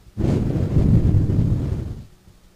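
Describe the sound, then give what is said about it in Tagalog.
A soft, steady gust of breath blown into a microphone to imitate a breeze, a low whooshing rumble that lasts about two seconds before fading away. “Hindi problema pinadala, hindi hangin. Yung masimoy na hangin.”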